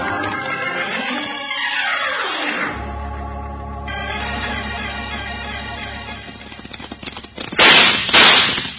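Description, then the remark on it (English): Two loud, sharp gunshots crack in quick succession near the end, fired by a man escaping out a window, following sweeping, falling tones and a steady low rumble, as in a staged radio-drama shootout. No one speaks. “He's shooting at us, Bill.”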